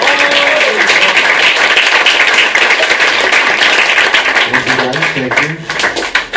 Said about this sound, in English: Big round of applause.